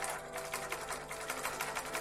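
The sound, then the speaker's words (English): A pedal-powered sewing machine runs steadily, its needle clattering in a quick, even rhythm of repeated mechanical ticks with no voices over it. “I then saved for a better sewing machine powered by pedals.”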